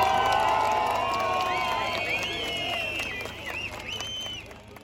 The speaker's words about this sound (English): Erdogan came out onto the balcony of the ruling Justice and Development Party headquarters in Ankara, greeted by a crowd of probably a few thousand people who were chanting, who were singing.